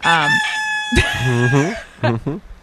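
rooster crowing

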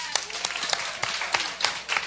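audience applause

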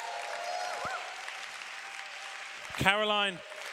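audience applause

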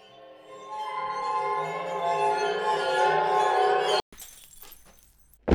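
glass shattering

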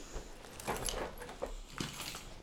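keys jangling

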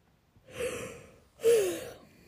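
yawning

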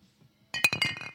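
glass bottles clinking together

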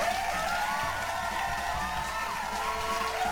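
applause

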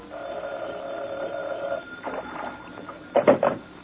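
telephone ringing

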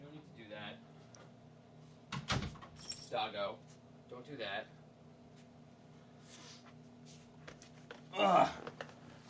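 door being closed

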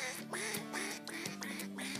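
ducks quacking

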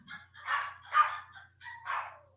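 dog barking

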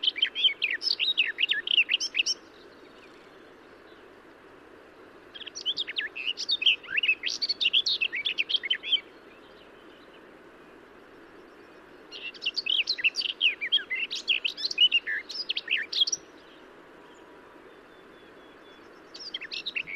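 garden warbler song

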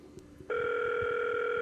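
telephone ringing

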